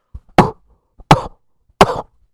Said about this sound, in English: No, okay, okay. Let's knock on the door.